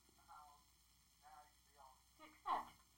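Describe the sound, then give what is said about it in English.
A phone rings for an incoming call with short, repeated electronic tone bursts spaced unevenly, the last one noticeably louder, heard over a faint background hum. “Phone call is already ringing.”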